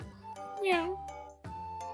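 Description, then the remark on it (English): A performer doing impressions for children imitates a cat with one drawn-out meow that rises and then falls in pitch, fairly loud, set against a steady faint hum and a couple of brief knocks. “That's a cat, everyone, isn't it?”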